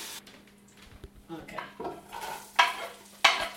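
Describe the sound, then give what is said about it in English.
Ingredients melt and cook in a pan with a low sizzle and stirring scrapes, with two sharp utensil clinks against the pan near the end. “I'm going to put that in and another one in and let that melt/cook in there.”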